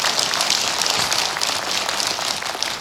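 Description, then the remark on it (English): A steady wash of applause from a church audience, many hands clapping at once in a dense, continuous patter at even loudness throughout, with no voices standing out. “It's easy for them to clap because they're already here.”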